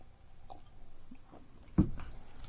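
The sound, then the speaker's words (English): Quiet mouth sounds of someone sipping light beer from a can: small wet clicks and slurps, then a louder gulp-like thump near the end. No one speaks. “Let's each take a sip, and then I'm going to call this cheers guy back.”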